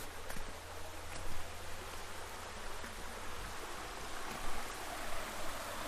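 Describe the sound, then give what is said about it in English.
A babbling brook flows steadily, a continuous rushing, gurgling wash of water at moderate volume with a few small surges, and no voices. “And the river was just a little twinkling, gurgling, babbling brook, which babbled down past a whole line of very innocent-looking ash trees outside the village.”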